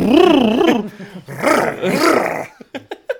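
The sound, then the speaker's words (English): Loud, wet chewing and slurping, starting with a growly, wavering vocal noise, then messy smacking, ending in a few sharp lip smacks. It sounds like a voice imitating the chewing. “Who chews like that?”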